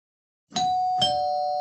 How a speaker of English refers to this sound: I really didn't know we had a door in the studio with a working doorbell.